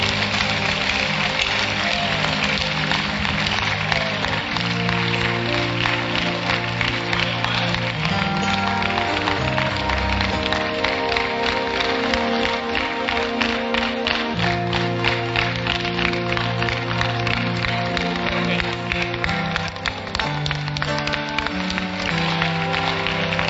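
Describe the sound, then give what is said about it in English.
An audience claps for Jesus and cheers in a dense, steady roar for over twenty seconds, the clatter of hands running unbroken beneath sustained, tonal voices or music at an even, loud level. “Clap for Jesus.”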